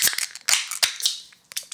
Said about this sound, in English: All right, let's grab our cans and grab our glasses. And let's open her up.